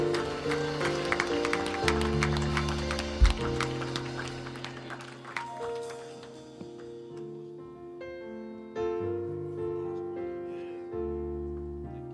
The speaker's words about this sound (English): Give the Lord a hand clap and a shout of praise.